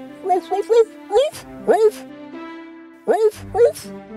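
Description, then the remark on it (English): Max, an old couple's dog, barks to greet them as they return home, a series of short, eager yips grouped in quick bursts with brief pauses between them, over a steady soft musical tone in the background. “When the old couple returned home sadly, their dear dog Max barked to greet them.”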